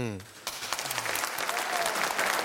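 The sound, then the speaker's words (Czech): A brief voice fragment opens, then steady, dense clapping starts in a studio and continues for about two seconds, fairly loud, like a few people applauding together. “Musím už zatleskat.”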